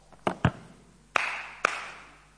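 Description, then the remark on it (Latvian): A few slow, scattered hand claps, only four in all, irregularly spaced and half-hearted, with the later two ringing out briefly. No one speaks. “Tie nav varen aplausi pareizi.”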